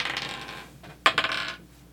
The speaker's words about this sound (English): So we'll give this a shot. I don't know how it's going to work, but let's roll them. But roll them, guys. I didn't bring my yellow dice, just so you know.